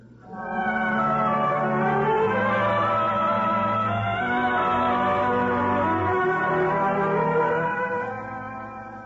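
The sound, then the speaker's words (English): Church bells clang together in a dense, ringing peal, their overlapping tones swelling in right away and holding steady and loud for several seconds before starting to fade. No voices. “I hope we can sleep without those bells clanging over us.”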